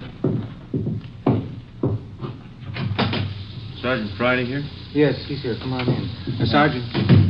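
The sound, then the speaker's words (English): A back door opens with several sharp clunks and rattles over a few seconds, then people start talking. “Somebody at your back door.”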